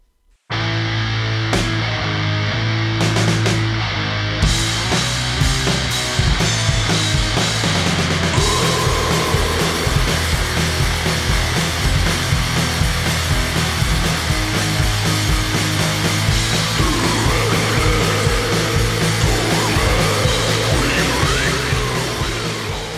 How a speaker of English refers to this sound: So this is great, powerful riffage here, but what really stands out are the excellent zombie vocals